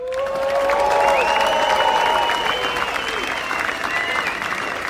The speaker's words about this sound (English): Clapping, clapping, clapping, yes. clapping.